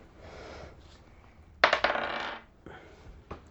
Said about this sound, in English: Roll the right dice.